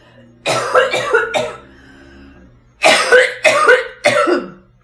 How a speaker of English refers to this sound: I just got so fired up that I had to cough, apparently. Still holding. Okay, so here's the deal. I'm still coughing.